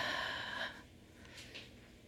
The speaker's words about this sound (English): Give yourself a big hug, big breath in. And exhale.